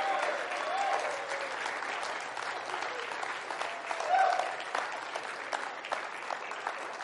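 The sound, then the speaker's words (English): An audience claps steadily for several seconds, a dense, continuous patter of many hands at an even loudness, with a few voices calling out faintly beneath it. “Clap your hands, oh ye people.”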